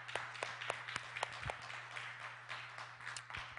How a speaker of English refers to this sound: Give him a hand clap.